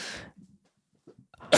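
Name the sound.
coughing fit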